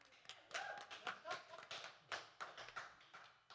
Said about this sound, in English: So, so awesome. So, so awesome. You guys can clap here in the building. You guys can clap.